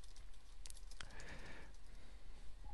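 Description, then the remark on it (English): A few soft, scattered keyboard clicks tap out irregularly at low volume, with a faint sustained tone drifting through the middle and no one speaking. “I'm messing up with typing as well.”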